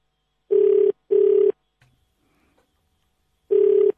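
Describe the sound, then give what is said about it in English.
An outgoing call's ringback tone through a phone line, calling Mam Ntombi: a double burst of steady buzzing tone, a silent pause of about two seconds, then the next burst beginning. Clear and alone, with no voices. “Mam Ntombi, please pick up the phone.”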